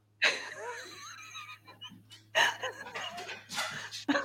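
A dog named Barley vocalizes with a long, wavering whine followed by several shorter squeaky, breathy bursts, over a faint steady low hum.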